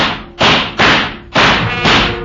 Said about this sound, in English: The shots were wild, and there were holes in the wall all around me.